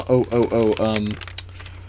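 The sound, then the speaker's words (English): A voice sounds first, then light paper crinkling follows on its own: a few soft, scattered crackles and one sharper crinkle, fairly quiet. “Crinkly paper.”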